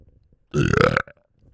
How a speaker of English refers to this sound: All righty. So do you want to burp mic? I mean, you just created one, didn't you?